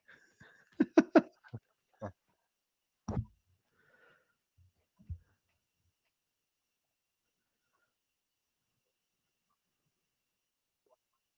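A man snoring in a series of short, rough snorting bursts, a quick cluster at first, then a few spaced-out snorts before the sound fades into a long silence.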